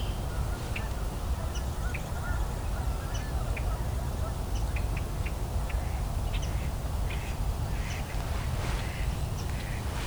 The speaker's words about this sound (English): Okay, I've got some mallards. Oh, those are flyovers. Okay. Thought they were about to float past me here.